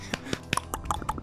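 Hand clapping, a quick, uneven run of sharp claps with fairly soft level, the slaps overlapping irregularly rather than keeping a steady beat, with no talking.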